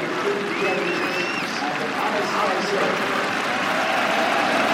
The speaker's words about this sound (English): What a reception. Everyone on their feet. A wonderful cheer for Alastair Cook. The Indians are lined up, and Alastair Cook walks between them all. They're applauding.